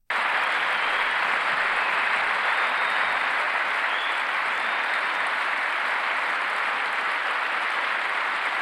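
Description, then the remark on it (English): Sustained audience applause break during a speech about serving veterans, a dense, steady wash of many hands clapping at an even loudness for the full length, with no voices breaking through. “It's like the longer the applause break, the more ridiculous thing that he said.”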